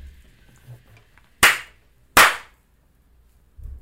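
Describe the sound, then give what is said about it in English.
Two sharp, hard hand slaps ring out about a second apart, loud, each with a quick bright crack and brief decay, given as a two-slap rating of a song, against an otherwise quiet background. “What do you how many slaps you giving it?”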